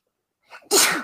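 A single loud sneeze: a brief breathy intake, then a sharp explosive burst of air that stays strong to the end. No one speaks.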